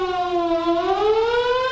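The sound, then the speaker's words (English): A loud, sustained civil defense warning siren wails steadily, its pitch dipping slightly and then rising again, with no voices over it. “What if a warning siren sounds? What should you do?”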